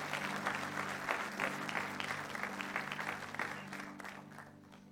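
Sustained applause from an audience standing for a pastor as he comes to share the word of God, a dense steady clatter of many hands clapping at an even loudness that eases off slightly toward the end, with a low hum underneath.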